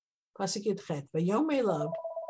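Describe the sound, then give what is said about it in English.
A telephone rings with a warbling electronic trill that wavers in pitch, ending in a short, steady held tone. “And I took all the phones down, still ringing.”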